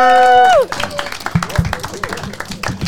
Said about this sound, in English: All right, can we get y'all to come down and we're gonna swap out our spots with y'all? Give him a round of applause, yeah?